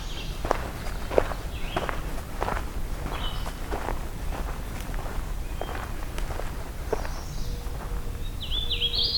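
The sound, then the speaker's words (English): A hooded warbler sings a few short, bright whistled phrases, partly masked by steady crunching footsteps on leaf litter, with the clearest phrase near the end. “I think how you can hear the hooded warbler song is a bit more substance to it.”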